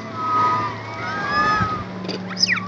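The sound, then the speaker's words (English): A chorus of high, squeaky calls from rhesus macaque monkeys on an island lined with palm trees overlaps, heard from a boat approaching the island in about 80-degree heat, with a sharper rising-and-falling call near the end, over a steady low engine hum. “It sounds like a flock of birds, or maybe the squeaks of dolphins, but it's actually the sound of primates, rhesus macaque monkeys.”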